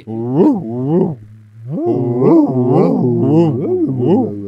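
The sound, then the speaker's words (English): A person imitates a basset hound's bark with loud, drawn-out baying howls, several wavering rising-and-falling wails run together with only a brief pause. “Here's a basset hound.”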